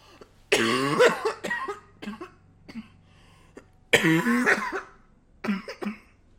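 Someone coughs up close in two harsh, loud fits, each trailing into smaller hacking coughs, with brief pauses between bursts and no talking.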